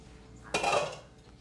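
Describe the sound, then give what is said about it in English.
A utensil clatters against a cooking pan heating avocado oil with chopped onions and garlic, in one sudden, bright metallic burst that rings and scrapes for about half a second before fading. Nobody speaks. “So what I'm gonna do, I'm gonna put in some avocado oil and then just some onions and garlic chopped up, and just get that heating up until it's kind of translucent.”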